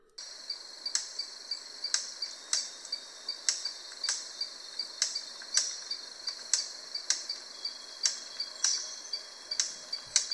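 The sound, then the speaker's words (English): A male bird of paradise makes sharp, dry cracking snaps by rubbing his wings together while bouncing around a female in a courtship display. The snaps repeat at a steady rhythm about every second over a constant high-pitched insect-like buzz. No one speaks. “The most remarkable thing, though, is this noise is not vocal, but is rather produced by rubbing his wings together.”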